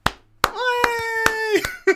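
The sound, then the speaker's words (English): Around six sharp hand claps at a steady, moderate pace, each a crisp slap, over a held vocal tone that sounds like someone humming or drawing out a note. “I don't know how well the sound of clapping comes across on a podcast, but I am clapping, sir.”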